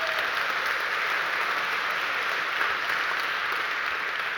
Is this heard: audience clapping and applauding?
yes